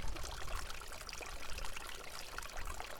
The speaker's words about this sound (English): Here's another tap. Here's another fountain. You want to hear some water? Here you go.